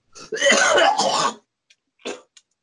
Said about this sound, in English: What are you coughing for? Are you sick? Yeah, I'm sick.